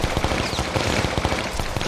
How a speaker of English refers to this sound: There's a loud stream of gunfire.